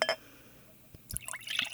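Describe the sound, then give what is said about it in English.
Beer trickles and splashes into a glass, with a brief clink at the start, a quiet pause, then a burst of bubbly pouring near the end. “Oh, doesn't that make you just want to wee?”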